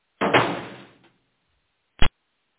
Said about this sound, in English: Well, and then a dead body drops to the floor.